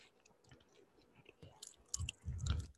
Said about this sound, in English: I'm chewing gum. Sorry, non-ASMR people.